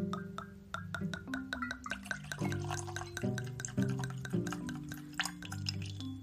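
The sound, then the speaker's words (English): Whiskey pours steadily into a Bourbon Thieves Glencairn glass for several seconds, with a gurgling, rising ring as it fills and small drips and splashes throughout; no one speaks. “I've poured this in my Bourbon Thieves Glencairn.”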